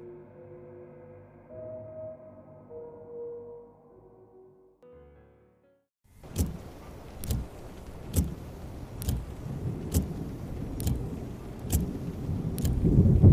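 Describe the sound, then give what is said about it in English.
A car idles with a low hum, then steady rain on a stormy night hits the windshield and fills the cabin as wiper blades swipe left and right in a regular, repeating rhythm while driving along, fairly loud. “Rain hitting the windshield, wiper blades swiping left and right, the palpable humidity of the stormy night diffusing into the cabin as you drive along.”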